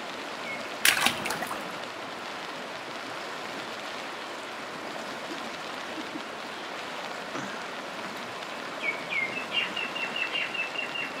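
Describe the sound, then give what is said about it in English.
At the ending of a song, birds chirp in a quick run of short, repeated high calls toward the end, over a steady rushing wash like running water or rain, after a sharp crackle near the start. “Because the bird's tripping.”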